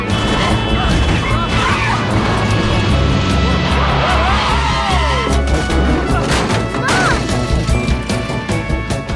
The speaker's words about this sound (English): We are still on the highway. Like, just, they are speeding as fast as they can to get to this hotel where this pageant is being held. They skirt into the parking lot. The sliding door literally falls off.